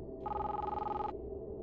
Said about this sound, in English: I went to head back towards the center of town, back to the other houses on the opposite side of the street, leading home when my cell phone rang.